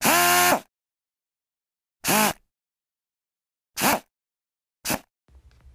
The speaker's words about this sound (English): That was a power tool. I think by their name you can tell that they use power.